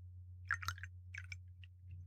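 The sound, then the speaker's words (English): Fireball Cinnamon Whiskey being poured into a glass close to the microphone: two short bursts of splashy, gurgling trickles with a few faint drips after, fairly quiet, over a steady low hum with no talking. “Here, let's see if I can pour it close to the microphone and anyone can hear it.”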